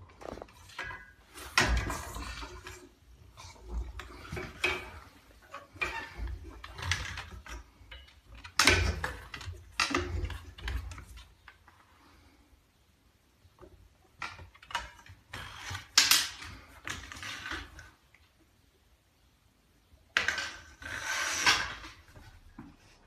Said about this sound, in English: You can only try to force the stick through the door so many times until you just have to give up.